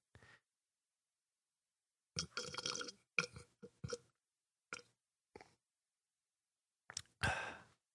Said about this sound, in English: You want to hear me drink some water? Water's pretty National boring. National Water Day. Okay, go ahead. Yeah. Here we go.